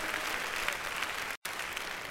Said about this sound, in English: Give God a big hand clap if you hear me.